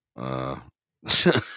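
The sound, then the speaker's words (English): A person lets out an exaggerated, voiced yawn: a drawn-out tonal groan, a short pause, then a breathy, rasping exhale trailing off. “Yawn.”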